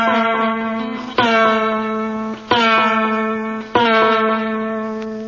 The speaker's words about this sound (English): Discordant, ringing, clanging note that echoes throughout that vast cave of the subconscious.